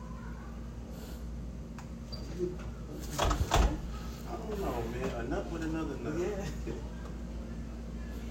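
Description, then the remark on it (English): A door swings shut with a short clattering thud and a quick metallic latch click partway through as a woman puts the latch on, while people talk before and after against a steady background hum. “Now she put the latch on.”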